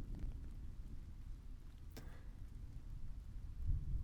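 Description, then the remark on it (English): Steady rain falls on a canopy of trees with a soft, continuous patter and a low rumbling wash, broken by one sharp drip or tap midway; no voices are heard. “But I remember hearing, truly hearing, the sound of the rain as I sat under the canopy of trees.”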